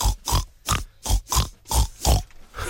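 Pig oinks are strung together to carry a tune: about seven loud, close grunts in a steady, bouncy rhythm, each a short snorting burst with brief gaps between.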